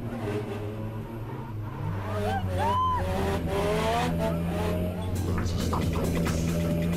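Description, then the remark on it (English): A car drifting, its engine droning steadily and loudly while tires squeal in wavering, rising and falling shrieks that come and go over the roar. “drifting is a huge balance sport. You're always playing a game between spinning and straightening”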